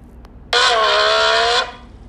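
A single loud, buzzy growl lasting about a second, a voice growling into the opening of a squished can to mimic a car engine going at high speed, with no talking around it.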